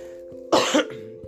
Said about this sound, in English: Excuse me. Cough, cold.